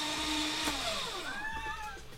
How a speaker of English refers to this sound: I'm so sorry. Shredder is having a terrible Monday today. Shredder wants to shred itself.